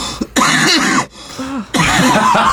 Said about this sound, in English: That sounds like me too when I'm coughing.